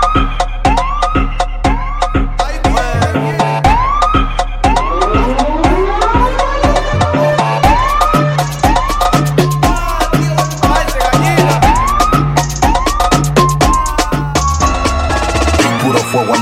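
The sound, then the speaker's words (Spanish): A police-style siren whoops in repeated rising sweeps, loud and steady, layered over a heavy pounding beat with deep bass throughout. “Estamos buscando carta blanca con la sirena prendida.”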